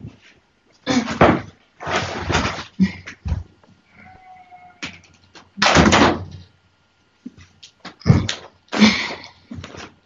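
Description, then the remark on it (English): A door is handled and closed, with several loud, rough bursts of creaking and thudding, separated by short pauses and faint squeaky tones. “Shall I close the door?”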